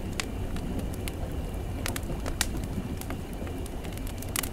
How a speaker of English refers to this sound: Look at that. Well, we've got a nice fire. We're in one of the cars here, one of the train cars.